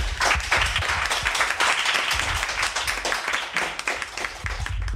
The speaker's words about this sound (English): What a perfect line to finish on. So if you could give us a quick round of applause for the play out, please.